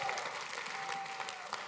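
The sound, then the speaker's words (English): A crowd claps steadily, many hands producing a dense, sustained patter of applause that fills the space at moderate volume without any talking over it. “If you receive that, go ahead and clap your hands again.”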